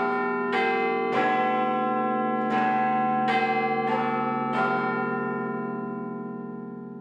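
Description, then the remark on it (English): The Big Ben clock-tower bells chime a melody of about six deep, resonant strikes, each ringing on and overlapping the next before the sound slowly fades. No voices are heard. “Now, what I want is the Big Ben.”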